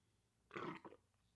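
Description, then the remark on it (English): A single short, throaty, fairly loud burp lasting about half a second with a brief rumbling tail, against a quiet background. “Oh god, I'm burping.”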